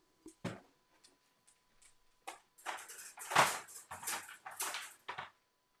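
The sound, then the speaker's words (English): A dog whimpers and whines while being put in a crate at almost 9 o'clock at night, amid a run of short rattling, shuffling bursts that grow busier toward the end, with no one talking. “Please excuse me while I put my dog in the crate.”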